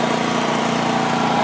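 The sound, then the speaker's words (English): A portable generator engine drones steadily, a continuous loud mechanical hum with a fast, even chug and no pauses or voices; not quiet, but much quieter than another generator. “now we're running on Wayne's over here. While it's not quiet, it's much quieter than mine”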